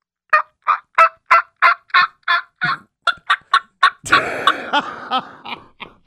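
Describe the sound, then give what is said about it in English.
A fast series of short, evenly spaced yelps builds into a loud, rattling gobble, a person imitating a turkey with a mouth call, clear with no talking. “I got the mouth call. You ready? I'm ready. Come on. Turkey up.”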